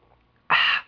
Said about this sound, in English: I'm going to go ahead and take a sip of ginger chamomile tea here just a second.